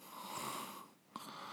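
Raspy, congested breathing with a rattling snore-like drone, held steady, then a brief pause and a sharp snort before the snoring resumes. An awake person with a cold makes it while sitting; their breathing naturally turns into a snore.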